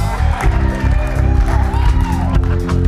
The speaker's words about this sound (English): He's not going to move. You're going to have to cheer better for him to come.